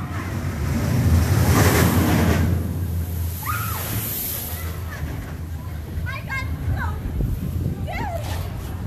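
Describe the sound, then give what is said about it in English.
A loud rushing splash surges up early on as a ride comes around its last sweeping curve and splashes down into a pond, then settles into a steady wash of churning water, with faint voices and short cries scattered over the noisy background. “coming around her last sweeping curve into the pond, splash-a-roo.”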